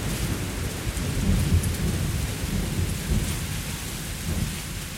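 A thunderstorm rages steadily: heavy rain hisses without pause while deep, rolling thunder rumbles low and continuous underneath, loud, with no voices present.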